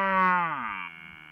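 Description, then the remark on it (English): A single reversed cow moo, a droning bellow whose pitch slides downward midway and then holds steady before cutting off, with no one talking. “And I'm pretty sure that is reversed.”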